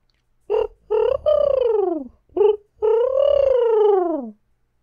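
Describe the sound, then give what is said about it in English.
A person imitates a dove's coo, fairly loud: two short hoots and a long, falling coo, then after a pause one short hoot and another drawn-out, descending coo. “Because this is what they sound like.”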